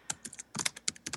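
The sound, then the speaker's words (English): Quick, irregular clicks of typing on a computer keyboard, a burst of about a dozen keystrokes, fairly quiet with no talking. “You're typing, and it's on the recording, you know.”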